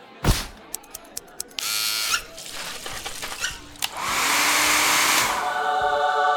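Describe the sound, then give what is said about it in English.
A rapid string of sharp clicks, then hair clippers buzzing in two loud bursts during a quick haircut, the second burst long and steady, with a few clatters between them and no talking. “That has to be a speed record for haircuts.”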